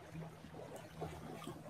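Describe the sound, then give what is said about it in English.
A boat motor drones across open water, a steady low hum with soft splashing and lapping of waves over the top, fairly quiet and with no voices; an occasional boat passing by, out in nature. “True connection to nature with the occasional boat passing by.”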